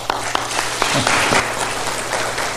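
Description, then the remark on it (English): An audience claps steadily to welcome a guest preacher before his sermon, a dense wash of many hands with a few sharper individual claps standing out, sustained at moderate loudness throughout. “Might want to save that till later, after you've heard the sermon, although I appreciate the applause beforehand.”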